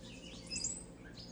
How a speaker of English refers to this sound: One of my favorite things as the sun comes up here at the observatory is all the birds we have out here just singing away. In the background, you'll probably hear a rose-breasted grosbeak. We have a bunch of wrens here, titmice, robins, you name it.